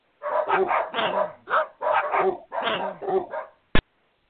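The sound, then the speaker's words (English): A dog barks in a rapid, continuous run of yappy, fairly loud barks, then stops; a single sharp click follows just after. “So she safeguarded the diamonds in a place no one like you would ever look, her precious dog.”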